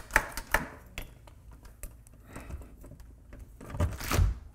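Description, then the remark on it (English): A door deadbolt being worked back and forth during an inspection to check that the door locks, giving a series of sharp metallic clicks and clunks at irregular intervals, with a louder rattling clatter near the end; the deadbolt does not lock. “Now I wanna check, make sure this door locks correctly.”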